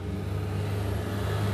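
A steady bus engine drone with a deep low hum and broad road rumble, holding even throughout while riding inside a bus to the Baylor Foundation; no one speaks.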